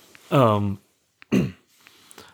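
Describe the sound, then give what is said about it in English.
A fairly loud throat clearing by a person with a frog in their throat: a drawn-out voiced rasp, then after a short pause a sharp, brief cough, with quiet background sound between and after. “Do you have a cough? I don't know what's going on.”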